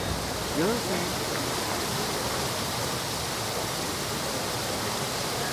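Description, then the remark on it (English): Water from the Trevi Fountain in Rome, Italy, splashes in a steady, unbroken rush that fills the scene at a constant level, with a faint voice briefly audible near the start. “At Rome's Trevi Fountain, the saying goes that if you stand with your back to the water and throw a coin from your right hand over your left shoulder, you'll return to Rome one day.”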